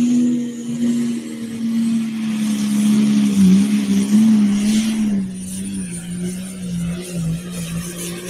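The turbocharged engine of the Bull Wagon pulling tractor at a tractor pull, throttle open and clutch held as it starts to roll: a heavy engine drones loudly and steadily, its deep tone wavering slightly as it strains under load, with a broad rushing roar above it and no voices.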